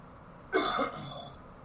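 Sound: sneeze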